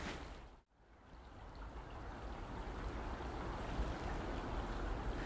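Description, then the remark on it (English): A rippling stream, heard in the distance by someone standing over it, gives a steady, even rushing hiss of moving water that fills the whole clip, broken only by a split-second dip near the start. No voices are heard. “Well, I hope you can hear in the distance that I'm standing over a rippling stream now.”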